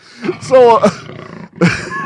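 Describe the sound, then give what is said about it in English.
A jaguar vocalizes with loud, deep, rasping grunts, like repeated burps. They come in two bursts separated by a brief pause, and the second burst fades out gradually. “This is an actual sound of a jaguar. It sounds like it's burping the whole time, but you don't want to hear that while it's gnawing your arm off.”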